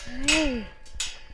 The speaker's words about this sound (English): That is the sound of the gate shutting behind me.